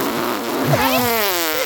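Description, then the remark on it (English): A loud fart sound effect: a buzzy, sputtering low blurt that stretches into a drawn-out, wavering tone lasting under two seconds, with no talking over it. “I'm so glad we finally have a reason to bring back all the fart. That one's the best one.”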